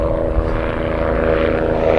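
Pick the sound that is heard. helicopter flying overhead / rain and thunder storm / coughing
helicopter flying overhead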